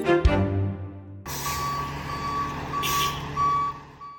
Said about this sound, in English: Many residents woke up to sounds of plows and salt trucks driving up and down streets after Mother Nature reminded us all, despite the warmer temperatures, we're very much still in winter.